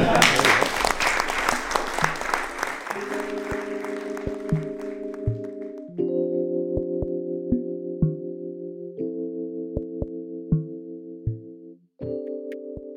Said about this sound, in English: And so just wanted to give a huge round of applause to everyone for opening up, just being honest, being vulnerable, and hopefully killing some deer this weekend.